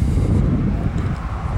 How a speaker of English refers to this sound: let that car go by.